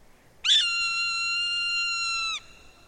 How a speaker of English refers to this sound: During raptor migration, kettles can swell with many different raptor species, like this Swainson's hawk.